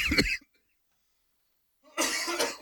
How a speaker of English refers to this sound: That's coffee and popcorn, people. That's not COVID. I don't know if you heard me cough. It doesn't bother me.